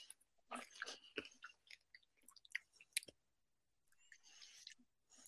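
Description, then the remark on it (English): Chewing with the mouth closed: soft, wet crunches and smacks come in an irregular run of bursts, with brief pauses between bites and no talking. “Yes, you probably can hear me chewing.”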